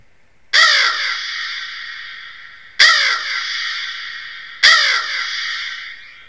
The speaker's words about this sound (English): Meanwhile, this bird, which sounded like it was making sounds from within the crypt itself, even though I know it wasn't, it just kept squawking away at us.